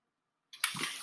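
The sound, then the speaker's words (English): After a moment of silence, a wet slurp of someone sipping water, a single breathy, hissing draw that lasts about half a second with no talking. “I'm going to take a sip of this water, and I'm going to recap this thing one more time”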